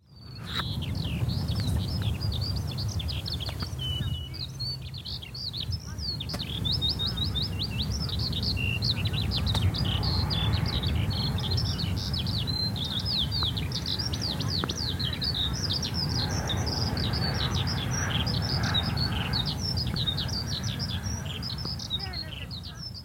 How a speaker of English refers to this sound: And just glorious to hear the skylark singing beside the sea.